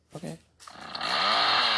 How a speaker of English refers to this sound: The chainsaw's gonna play again.